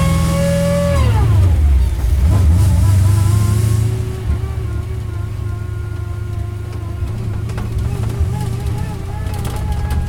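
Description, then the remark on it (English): A supercharged S-Type car's engine rumbles steadily with a thin, high supercharger whine riding over it; the pitch drops sharply early on, then holds a constant, moderately loud drone as the car goes steadily down the entry road at Harewood in heavy rain. “And as you can hear, already a whine in the distance. That's from the supercharger on this S-Type.”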